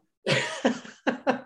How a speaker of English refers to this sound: Cough, cough.